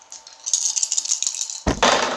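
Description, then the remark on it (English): Dice are rolled for a might attack in a game, rattling briskly for about a second and a half in a bright clicking clatter, then a sharp thump as they tumble out and clack to a stop. “So we now have to roll against each other.”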